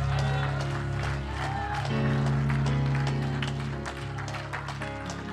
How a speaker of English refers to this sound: Now give him a hand clap and shout of praise.